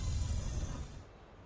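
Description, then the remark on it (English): A train sound effect used as an intro: a loud burst of steam-like hiss over a low rumble, the hiss cutting off after about a second while the rumble fades out. No voices. “I didn't know we were going to have a cool, like, train intro outro.”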